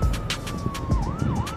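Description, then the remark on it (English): A police or ambulance siren in a big city holds a steady tone, then dips into a rising-and-falling wail, heard over street traffic and intermittent bursts of city noise, not overpowering. “And just like in any major movie that has to do with being in any big city, you notice how they always have that scene where you hear the ambulance, fire trucks, or the police sirens in the background.”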